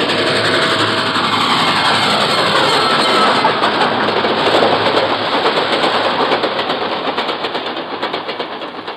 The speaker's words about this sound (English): Then, dimly, I can make out an approaching roar. Another train heading right for me.